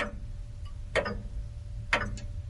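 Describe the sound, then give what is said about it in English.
A clock ticks slowly and steadily, two crisp clicks about a second apart over a low background hum, with no one speaking. “They're working on a clock that will go on ticking for your lifetime, your children's lifetime, their children's, and their children's”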